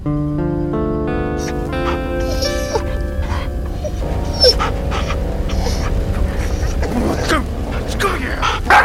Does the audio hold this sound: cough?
no